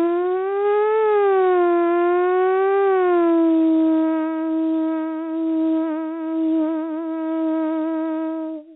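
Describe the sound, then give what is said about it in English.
A single voice sings sustained sound-healing tones as a sample over the phone, a steady mid-pitched note that swells gently up and down twice, then holds level with shimmering, wavering overtones for several seconds, unbroken and fairly loud. “And when I make, can I just give you a little sample on the phone of what it sounds like to use my voice for the sound healing?”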